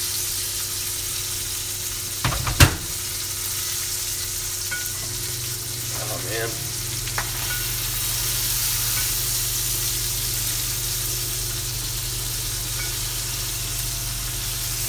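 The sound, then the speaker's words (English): Meat sizzles steadily in a hot pan, a dense crackling hiss that carries through the whole stretch, broken early by a couple of sharp clacks and a few soft clinks. “I hope they can hear the sizzling in the podcast.”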